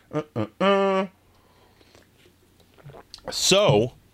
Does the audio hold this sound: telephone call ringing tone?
no